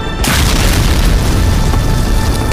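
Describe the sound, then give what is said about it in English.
A sudden, loud explosion bursts in after a split second of quiet as an explosive set off by ninja warriors blows a huge hole through a wall at an asylum, then gives way to a heavy, continuous low rumble and crackling roar that carries on to the end. “After they took out the police, the ninja warriors set off an explosive and blew a huge hole through the wall.”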